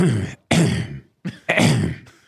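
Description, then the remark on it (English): A loud bout of harsh coughing and throat clearing: four rough bursts in quick succession, the last trailing off, with no talking. “That's if you're going to cough, you hit that button.”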